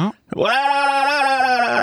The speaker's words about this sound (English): Maybe if I yell, I can get that. Oh, I got it. Nice. Yeah, now you've got it. It's Yay. Infectious. It's like the Omicron variant of sound effects.